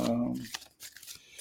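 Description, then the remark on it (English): A deck of intention cards is shuffled by hand, making quick papery flutters and soft slaps, briefly preceded by a voice. “And I'm shuffling like my grandmother used to shuffle.”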